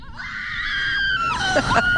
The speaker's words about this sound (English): These two girls are screaming their heads off on a thrill ride called the Slingshot. Something tells me that this was probably their first and very likely their last time on that ride.